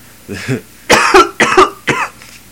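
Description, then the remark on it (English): A few rough coughs in quick succession: two soft, low hacks followed by three louder, harsher bursts spaced about half a second apart. “Sorry about the coughing of the white there.”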